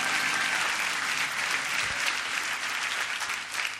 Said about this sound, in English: Let's give Jesus a clap. Come on, give him a clap, clap, clap.